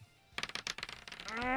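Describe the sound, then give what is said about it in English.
Two dice are rolled at the same time for an attack roll with disadvantage, clattering across a hard surface in a quick, irregular burst of sharp clicks and rattles lasting under a second, landing on a 3 and a 14; then a voice begins to speak as the rolling stops. “Roll both of them at the same time.”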